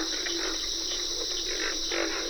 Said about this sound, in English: Pig frogs are the featured crooners at a wet grassy prairie in the Okefenokee National Wildlife Refuge in Georgia. Backup singers include cricket and carpenter frogs.